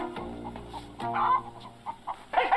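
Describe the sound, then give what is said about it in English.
Chickens cluck in short, uneven bursts, several bright calls overlapping with a low background hum underneath and no voices. “Oh, they have chickens.”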